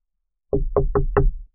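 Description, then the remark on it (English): Four solid knocks on a wooden dojo door, evenly spaced, each a dull thud with a short ring, with no voices. “Zoe called out, knocking on the Valley Town Dojo door”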